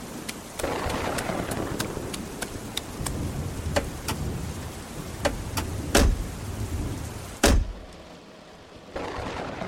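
rain

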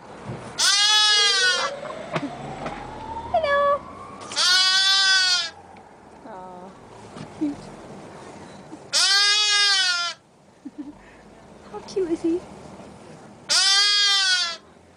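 sheep bleating

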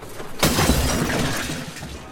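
glass shattering sound effect

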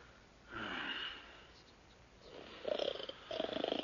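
man snoring

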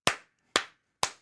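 hands clapping

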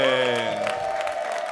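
audience applause and cheering

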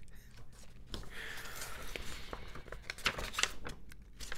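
paper rattling

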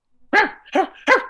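dog barking

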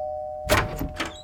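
doorbell ringing

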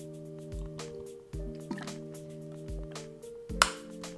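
drinking water

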